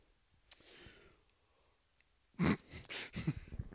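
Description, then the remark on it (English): A breathy yawn: soft airy breathing at first, then a loud drawn-out exhale with a low voiced groan that trails off over the last second or so. “I can never stop yawning when I'm here.”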